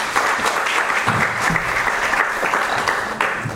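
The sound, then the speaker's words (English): An audience at the University of Iowa claps steadily to welcome a speaker, a dense, even patter of applause that holds at a strong level throughout without fading. “So let's give him a round of applause.”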